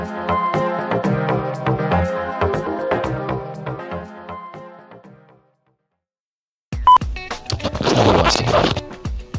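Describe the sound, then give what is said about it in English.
Loud rubbing and scraping clatter of a microphone being handled and shifted, harsh, with bursts of crackling friction after a brief silence. “That's me moving my mic.”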